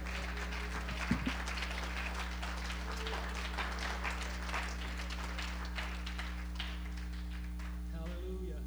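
A church audience claps their hands unto the Lord, a dense, steady patter of many overlapping claps running the whole time over a low electrical hum.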